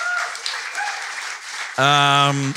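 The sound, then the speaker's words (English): A live crowd claps and cheers steadily, a dense rush of applause for themselves as an event with a VHS trailer game wraps up, then a loud sustained voice rings out over it near the end before cutting off. “Give yourselves another big yes, round of applause.”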